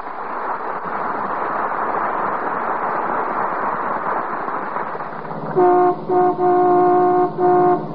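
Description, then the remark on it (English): Steady, dense traffic rumble for several seconds as the McGee family car, driven by Mrs. McGee with Mrs. Dennison in the front seat, comes down 14th Street, then a car horn honks in a series of loud, sustained blasts broken by short gaps near the end. “That's the McGee family car coming down 14th Street.”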